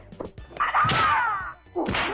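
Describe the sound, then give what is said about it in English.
A movie-style karate fight strike to the groin: a sharp whip-like crack that swells into a loud swishing impact, followed by a second heavy hit near the end, with no talking. “Oh, that was a growing shot.”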